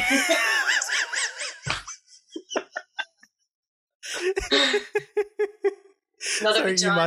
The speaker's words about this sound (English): You might have just heard my dog in the background. She's like rolling around going, ah.